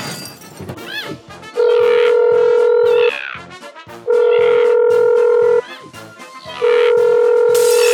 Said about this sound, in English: is that the phone? I can just about hear it over all this fighting.